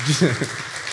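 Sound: audience applauding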